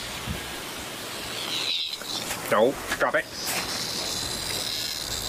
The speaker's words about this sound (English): It's inside the dog's mouth. Drop it. Drop it. No, come on. Drop it. What's that noise? Drop it. No. Oh my God, those things are so loud. That's one cicada inside of a dog's mouth.